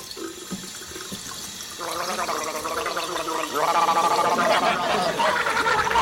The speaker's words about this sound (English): I can't find my toothbrush! Well, just gargle! All right!